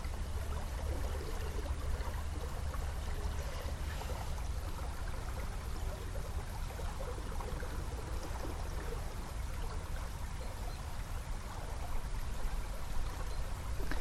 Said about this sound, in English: And I think it's because when I'm here, I need to be present and witnessing what's happening, because there is so much happening when you're at the river.